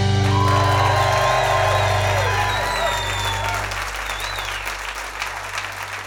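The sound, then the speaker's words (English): A large audience at eTown Hall bursts into sustained applause with cheers and whoops, loud, while a steady low hum and some tonal music or feedback ring beneath before fading partway through. “What a crowd, what a sound, what a sight.”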